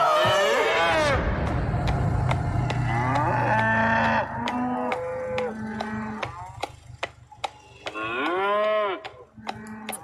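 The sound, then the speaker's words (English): A cow chasing a small calf in the back of a truck bellows loudly and repeatedly in long, drawn-out moos, with sharp clicks and clatter scattered throughout, and a quieter low rumble like a vehicle running underneath. “And for those who obviously can't see that, there is that cow chasing a small calf in the back of a truck there.”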